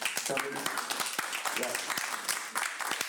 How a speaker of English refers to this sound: Like, why are they clapping for me?